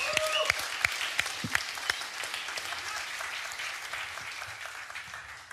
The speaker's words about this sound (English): So with that said, I would like to welcome you all to join in an applaud for our amazing host for tonight,